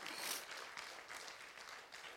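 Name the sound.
audience applause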